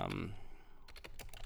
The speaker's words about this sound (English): You know, if you guys can hear me typing, I'm looking for a specific thing that he said about his 30 caliber clip.